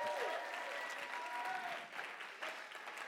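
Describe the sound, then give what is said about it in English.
A crowd claps steadily for about three seconds, a dense, even patter of many hands with a faint murmur of voices underneath, easing slightly toward the end. “Let's clap one more time or something.”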